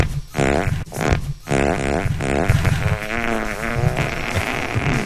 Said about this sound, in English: this is … motorcycle fart